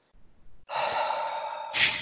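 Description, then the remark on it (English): A single person imitates an audience's sharp, breathy gasp at a stand-up joke, stretching into a long exhaled sigh, fairly loud, ending in a brief airy burst; no words are spoken. “I used to have really horrible jokes about my grandmother, and I'd get those noises, like those gasps, or like real like deep sighs, like.”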